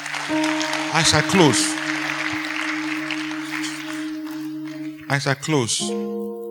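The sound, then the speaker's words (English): An audience claps for Jesus in a steady, dense wash of applause over sustained keyboard chords, with a man's voice speaking briefly over it at the start and again as the clapping fades. “Clap for Jesus.”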